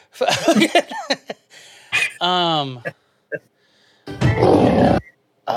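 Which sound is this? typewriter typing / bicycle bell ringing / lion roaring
lion roaring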